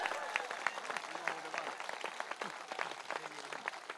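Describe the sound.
A crowd applauds steadily for several seconds, dense overlapping claps forming a continuous rattling wash, with a few voices and cheers mixed in underneath.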